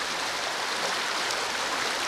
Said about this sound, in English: The Yelton Spring in Missouri's Mark Twain National Forest is running strong. The cold, clear water is flowing rapidly out of a cave-like opening, over rocks and fallen tree branches in what was a dry creek bed.